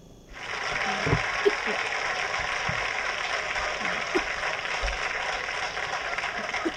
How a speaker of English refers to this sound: We get an applause.